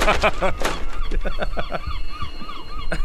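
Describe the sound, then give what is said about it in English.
Seagull calls play from a small phone speaker through a ghost detection app, a rapid run of harsh, squawking cries that slows into scattered yelps, fairly loud over a faint steady electronic whine. “There's a seagull in here.”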